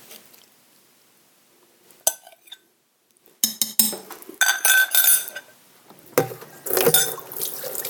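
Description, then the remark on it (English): Sauce is poured over food in a crock pot turned on high, amid clinks and scrapes of glass and utensils, in a few uneven bursts after a quiet start, with no one talking. “Now I'm going to turn this crock pot on high. And I am just going to pour this over all of this luscious stuff.”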